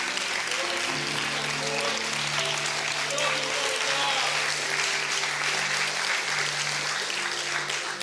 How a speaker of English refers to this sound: Stand to your feet all over the building. Clap your hands real big for the Lord today. Clap your hands for the Lord.